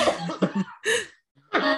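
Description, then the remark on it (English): A string of harsh coughs in quick succession, then a brief pause and one more raspy cough, from someone who believes they have COVID despite a negative test; no talking, just the loud coughing fit. “You hear that cough, right?”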